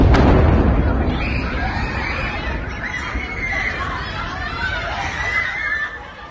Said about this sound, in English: That was Kyiv earlier today. Those are school children who were moving to a bomb shelter down the street. There was the sound of that explosion. They started to scream and run in panic.